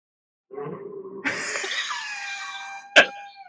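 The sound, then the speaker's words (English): A low, rough cough is followed by a long, high, wavering horse-like whinny, made by a man as an involuntary reaction to someone else's cough, ending in a sharp, abrupt cough. No words are spoken. “Yeah, we think it's, he reacts to somebody else's cough by doing a horse whinny, an involuntary horse whinny.”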